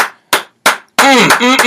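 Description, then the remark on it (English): Three sharp, separate hand claps ring out in a slow, even rhythm, then a loud voice starts up and carries on to the end. “Can we give another round of applause for somebody who's got a brain, ladies and gentlemen?”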